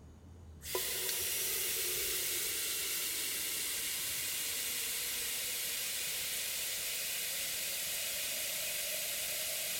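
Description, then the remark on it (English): After a brief moment of quiet, a kettle of water being boiled to make a cup of tea bursts into a loud, steady hiss of steam that carries on evenly to the end, with no voices. “The act of boiling water, selecting a flavor, and waiting just enough for it to steep perfectly was the same every time.”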